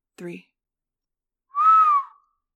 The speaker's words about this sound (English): gave a low whistle.